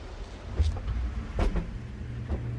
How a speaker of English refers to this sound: This is the insectary. That humming is from an environmental growth chamber.